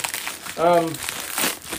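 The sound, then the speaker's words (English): An Amazon mailing envelope holding what feels like a hardback book, sent from Washington state, is handled and opened, giving a steady papery crinkling and rustling for nearly two seconds, with a brief humming voice partway through. “I have a Amazon envelope here that's got what feels like a hardback book in it.”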